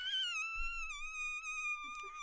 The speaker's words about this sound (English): Oh, that was a door opening.